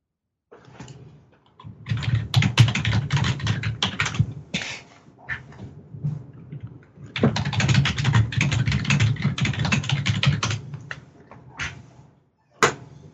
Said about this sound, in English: She stares at me blankly and makes typing noises.